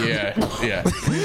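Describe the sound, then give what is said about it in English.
Several rough, harsh coughs and throat-clearing bursts come in quick succession, fairly loud, mixed with voiced sounds, from a person with a tickle in the throat. “And you have like an extra aggressive cough, too.”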